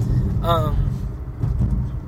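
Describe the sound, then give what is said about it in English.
Steady low rumble of road noise inside a moving car, loud and continuous throughout, with a brief snatch of a voice near the start. “We're nearing the end of the car trip.”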